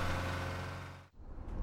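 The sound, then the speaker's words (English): A car engine roars loudly, revving hard with a steady low drone, briefly dipping before surging again as the car is driven away as fast as possible on a dirt road, a cloud of dirt rising behind it. “We made it to the car and frantically climbed in. Miranda driving away as fast as she could”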